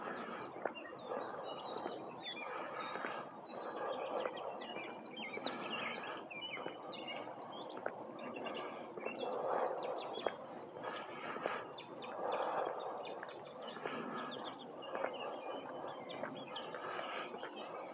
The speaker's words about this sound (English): Listen to those birds.